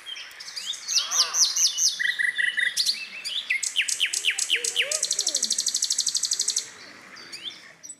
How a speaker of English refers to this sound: Did you see how that bird used everything that it had to make that joyful noise? The bird was praising God.